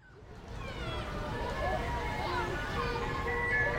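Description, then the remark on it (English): An ice cream truck's tinny, music-box jingle plays a repeating melody, growing steadily louder as it draws closer, with faint background chatter and street noise underneath. “Oh man, the ice cream truck is coming!”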